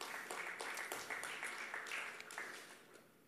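A church audience claps together to honor its 242 group leaders, a dense, steady patter of many hands that carries on throughout and eases off slightly toward the end, with no voices over it.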